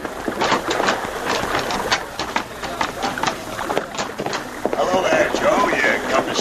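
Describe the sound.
A steam tugboat, already with steam up, idles at a dock with a steady, rhythmic chugging, while indistinct voices murmur over it throughout; the mechanical pulsing stays loud and even.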